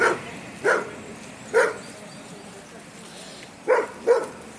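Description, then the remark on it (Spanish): A dog barks at people passing by, five times in short, sharp bursts: three spaced-out barks, a pause, then a quicker pair, over a low background hiss. “Y que sí, está harto de que va a pasar gente, el perro.”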